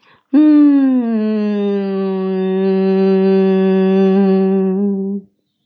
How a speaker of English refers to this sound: So that was humming